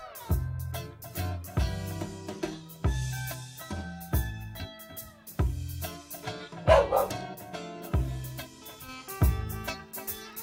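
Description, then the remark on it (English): Dog barks repeat in a steady rhythm, set into a loud music track with sustained tones, as if used as a sound effect within the song. “The dog barking sound effect works.”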